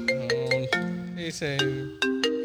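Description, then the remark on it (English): A phone ringtone plays a bright electronic melody of stepped, sustained notes, loud, running continuously with no one speaking over it. “Oh no, don't answer it.”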